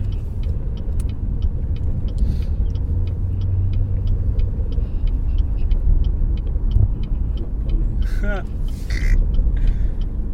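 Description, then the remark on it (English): Steady low engine rumble and road noise from inside a moving car, with a faint repeating ticking like a turn signal and a brief squeak near the end. “Right now, guys, we're currently driving, trying to be safe and do this podcast at the same time.”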